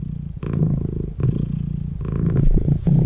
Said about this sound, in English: Can you guess what that is? It's a kitty. It's a purring kitty. It's a cat purring.